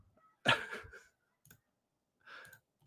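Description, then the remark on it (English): A forceful nose blow: one loud, breathy honking blast lasting about half a second, followed by a few shorter, quieter snuffles. No one speaks. “I had to blow my nose there.”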